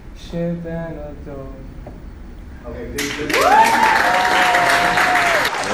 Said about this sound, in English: A massive round of applause from the class. Absolutely beautiful.